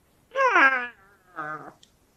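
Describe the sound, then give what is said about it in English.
A cat wearing a hood meows twice, first a longer drawn-out yowl that trails off, then a shorter, lower meow after a brief pause. “I mean a cat in a hood.”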